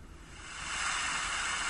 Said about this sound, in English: This one is treehouse rain. Get ready for this.